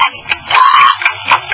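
A muffled ticking comes through a narrow, tinny telephone line during a phone call, with a few distinct clicks and a louder, rougher strangling noise in the middle. No one speaks.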